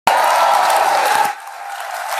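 A burst of crowd applause and cheering, loud and dense from the start, then dropping abruptly to a softer, thinner patter of clapping that carries on to the end.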